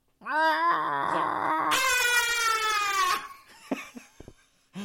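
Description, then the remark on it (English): A person imitates Godzilla's roar: one long, loud vocal bellow that rises in pitch and turns harsh and screeching for about three seconds, then stops. A few faint short sounds follow. “They're in Monarch's custody, and then they get shown a slideshow, and then the movie ends with Godzilla roaring.”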